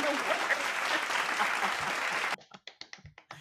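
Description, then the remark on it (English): A recorded applause sound effect, triggered twice by a host: a burst of crowd applause, dense and steady for a couple of seconds, then it thins out abruptly into a handful of scattered individual claps trailing off. “Yay, we get a round of applause.”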